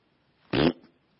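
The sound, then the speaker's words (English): A single short, buzzy blown raspberry, loud, lasting about a quarter second with a brief trailing sputter, alone against near silence. “I don't have to exposit the raspberry.”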